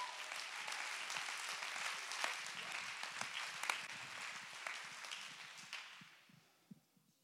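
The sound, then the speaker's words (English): An audience claps together to give God praise in a dense, steady burst of applause that holds for several seconds, then thins out and fades to a few scattered claps at the end. “Let's clap our hands and give God the praise.”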